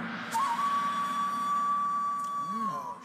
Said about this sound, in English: It's like a gong and then know, like a whistle. It's a mixture.